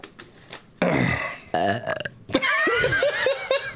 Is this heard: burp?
yes